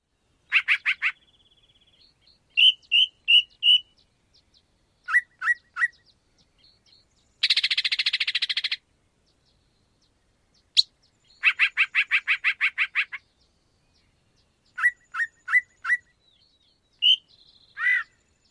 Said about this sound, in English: Like I said, the sheer number of sounds is pretty impressive. So one more time, the song of the yellow-breasted chat.